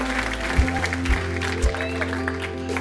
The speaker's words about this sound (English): And a warm applause